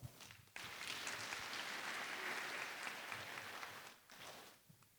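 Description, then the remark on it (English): A crowd bursts into sustained applause for a Grade 3 school performance at a celebration, dense clapping rising quickly, holding steady for several seconds, then thinning out toward the end. “Please give our Grade 3 performance another round of applause.”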